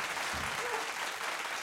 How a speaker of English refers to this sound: Can we get a round of applause? Thank you. Round of applause for UQ dog shit. Very nice.